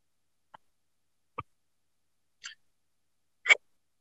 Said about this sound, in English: Sorry, my daughter, she's sleeping here and she's just coughing.